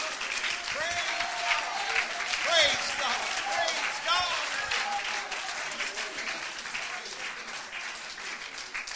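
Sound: audience clapping hands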